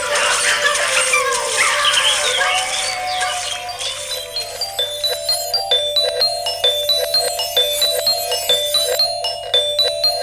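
dogs howling and whimpering

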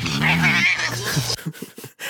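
angry cat meowing

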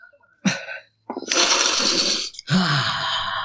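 sniffing a book

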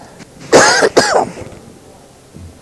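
coughing and throat clearing

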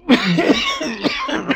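man coughing

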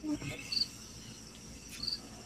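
cricket chirping

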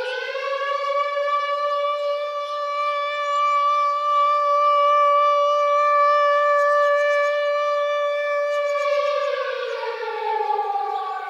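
horn blast

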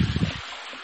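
toilet flushing

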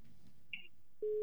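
phone line tone

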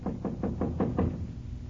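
knocking on a door

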